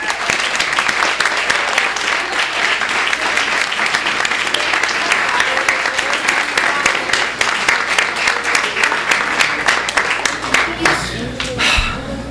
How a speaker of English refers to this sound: So I'm going to ask all of you guys to stand up right now and take one giant round of applause.